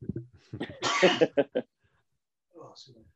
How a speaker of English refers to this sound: It's coughing away.